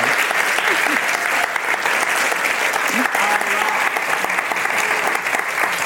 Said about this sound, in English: Can we give a huge round of applause for Molly? She was amazing.